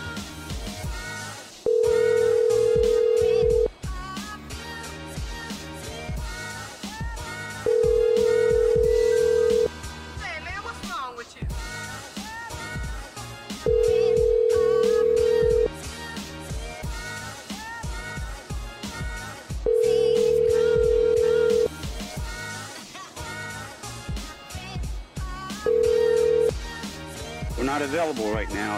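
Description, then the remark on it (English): A telephone rings with a call from the Popeye's Louisiana Kitchen corporate office, a steady electronic tone sounding in five evenly spaced bursts about every six seconds, loud over a busy bed of music and voices. “Pick up the phone.”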